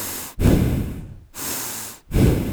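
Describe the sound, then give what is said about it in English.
A man breathes deeply in and out through clear nasal passages, three long airy swells with brief pauses between them, loud and breathy with no talking. “That's some clear passageways. That's a man who doesn't snore, okay?”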